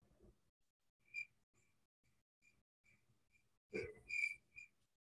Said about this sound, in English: Let me get my crickets again.